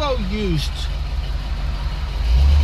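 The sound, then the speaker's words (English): A car engine rumbles low and steady, then swells louder near the end as the car pulls out of a school driveway into traffic, with a brief voice sounding at the very start. “And bear with me here as I pull out of traffic.”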